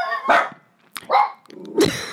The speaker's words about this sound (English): Doggies. Everyone's asleep. Doggies. Sorry about that. The dogs were going a bit crazy.